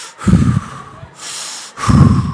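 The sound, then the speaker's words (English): Heavy, exaggerated breathing like someone huffing into a phone: two loud, rough breaths with a softer airy inhale between them, and no talking. “"I'm breathing." "Let's breathe together."”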